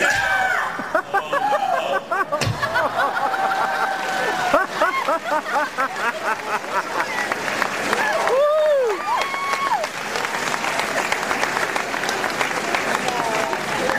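A large crowd roars and applauds continuously, with whoops and shrill whistles rising above dense, loud cheering that barely lets up.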